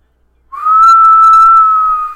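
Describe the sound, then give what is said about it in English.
A person attempts to whistle one long, steady note that slides up slightly at the start, then holds at an even pitch for well over a second, loud, blowing on the microphone. “I tried to whistle. Let's see if I could try again.”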